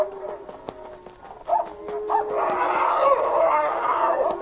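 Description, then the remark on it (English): A German shepherd and a huge strange dog bark and howl among cattle, short sharp yelps at first giving way to a sustained, rising chorus of howls that fills the second half. “Look at that huge dog with Checo.”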